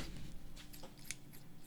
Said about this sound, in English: Got any scissors? We could put the scissors by the mic. That'd be some ASMR shit. Right snip, snip, late. Snip.